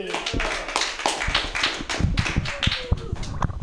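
An audience at a stand-up comedy show on Mutiny Radio claps steadily to welcome the next comedian, many overlapping sharp hand claps forming a dense, continuous patter at a fairly loud, even level with no voices standing out.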